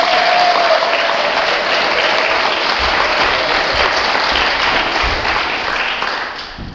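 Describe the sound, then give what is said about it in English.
Sustained applause from an audience for children after a nativity service, a dense steady wash of many hands clapping that holds for several seconds before starting to fade at the end. “I think they deserve an applause. Should we give them an applause?”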